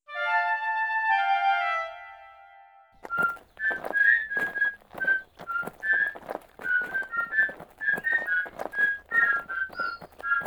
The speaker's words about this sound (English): Maybe, Doc. I just don't like the whistle.